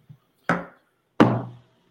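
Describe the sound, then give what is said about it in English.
Two sharp clacks of glasses of Campari knocking together in a toast, each a bright hard hit with a short ringing tail, spaced under a second apart with a faint tap before them. “Cheers. Clack, boys.”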